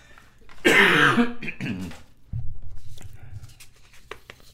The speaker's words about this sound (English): Excuse me while I cough.